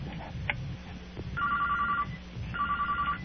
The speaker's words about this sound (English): We got a phone call. Let's take the call.